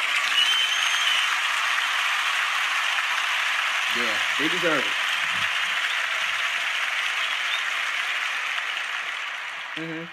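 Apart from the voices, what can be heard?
round of applause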